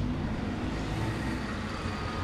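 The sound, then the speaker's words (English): A vintage Blower Bentley car drives past along Downing Street, its engine rumbling steadily, a deep, throaty drone holding an even loudness throughout the short stretch, with no one speaking. “Blower Bentley, that one.”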